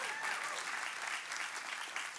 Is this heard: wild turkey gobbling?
no